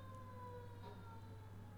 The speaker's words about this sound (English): I'm not sure the microphone could pick that up, but there's a fire truck going by. Come on. All right, maybe it's done. I don't know if you heard that or not, but fire engine going by.